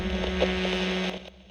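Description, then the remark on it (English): Dense radio static from a machine that has lost its station hisses and crackles over a steady electrical hum, holding fairly loud before abruptly thinning out near the end. “Enoch's machine began to crackle once more, as if the station had been lost. The oscilloscope wavered frantically as the static grew louder.”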